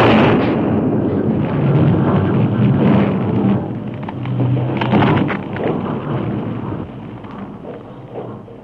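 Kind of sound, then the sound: impact, dynamite explosion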